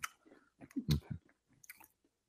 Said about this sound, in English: He's eating a chicken cutlet. Oh, God, I hate that sound.